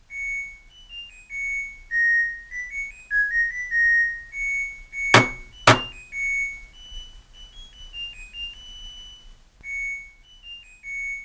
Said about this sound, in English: This is the actual sound that's played when my washing machine finishes washing my clothes.